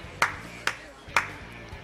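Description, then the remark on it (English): A single person claps four times in a slow, steady rhythm, each clap sharp and crisp, with faint voices murmuring underneath. “tell you what, I just noticed that you were clapping by yourself.”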